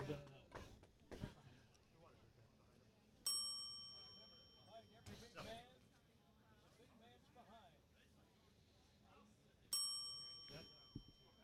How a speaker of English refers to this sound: You can tell by the amount of bells going off.